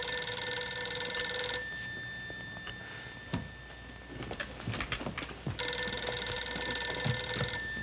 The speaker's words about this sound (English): The phone rang.